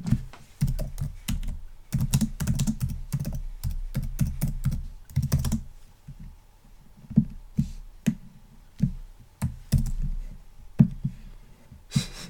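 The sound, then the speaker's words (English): Rapid typing on a computer keyboard, a dense burst of clicks for the first five seconds, then slower, scattered keystrokes and taps with short pauses between them. “Sorry if you can hear me tapping away on the keyboard.”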